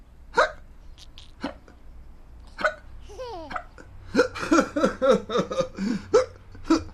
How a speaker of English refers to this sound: Has baby still got hiccups? Asked Mama. No, they're gone, said Little Sister.